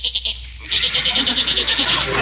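A goat in a flower garden bleats loudly, a long quavering cry with a rapid, trembling pulse that swells after a short opening burst and carries on steadily. No one speaks over it.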